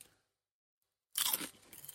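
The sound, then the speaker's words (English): Near silence, then a sudden loud, crisp crunch as a Proper Crisp rosemary and thyme potato chip is bitten, followed by a few seconds of crackly chewing. “That chip is delicious.”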